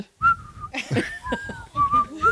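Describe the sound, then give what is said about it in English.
A person whistles a short, bouncy tune, sustained pure tones gliding between pitches, with brief breathy bursts and some background noise between phrases. “Whistling, the best thing to do on a podcast.”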